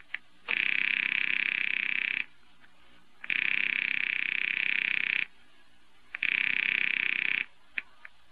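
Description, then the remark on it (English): A telephone line rings in three long, steady buzzing bursts, each under two seconds, separated by short pauses, as a call is placed at night to a husband's office. The tone is loud and even, with no voices. “I am ringing Murray Hill 40599.”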